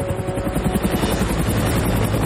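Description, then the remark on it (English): An attack helicopter with guns on it thunders, its rotor blades beating out a rapid, steady chop over a constant roaring engine drone. No voices are heard. “A chopper arrives, and it doesn't look like a regular kind of chopper.”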